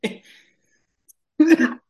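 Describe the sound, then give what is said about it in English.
A short, raspy cough, then a pause and a louder, longer, throaty cough with a rough voiced edge, with no talking around it. “You gotta Yes. watch those glopple coughs”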